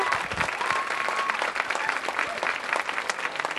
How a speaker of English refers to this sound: You guys, a big round of applause for …. Thank you.